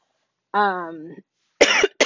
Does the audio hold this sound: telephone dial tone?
no